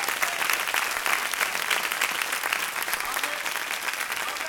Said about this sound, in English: Come on, people, give God a big hand clap if you're hearing me today.